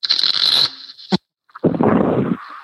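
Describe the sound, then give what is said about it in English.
Two quick bursts of playing cards being riffle-shuffled for a hand of blackjack, each a dense fluttering rush lasting about half a second, separated by a short snap and a brief silence, fairly loud. “Shuffling cards.”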